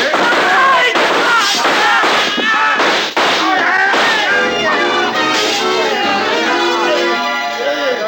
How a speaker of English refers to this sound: The shooting went on for about 5 seconds, and when the glass started to come down behind us, we covered up.